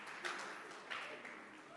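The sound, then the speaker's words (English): An audience claps their hands for their bishop in a steady, dense patter of many overlapping claps, fairly soft throughout with a couple of slightly stronger bursts and no voices. “Clap your hands for him.”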